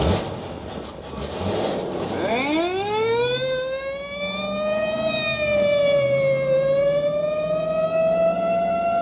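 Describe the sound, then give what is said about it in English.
A police car siren winds up from a low rumble into a loud, sustained wail that holds steady with a slight waver, continuous with no talking. “Or in a screaming squad car.”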